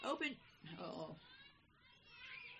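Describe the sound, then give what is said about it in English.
A cat meows a couple of times in drawn-out, wavering cries, followed by a thinner, higher mewing that trails off. The sounds are fairly quiet, with no talking. “You hear that cat's voice?”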